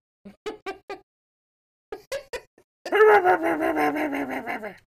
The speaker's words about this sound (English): Fucking neighbor's dog.